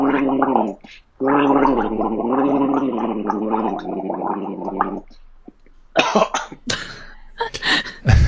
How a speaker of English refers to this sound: The cough at the end never fails.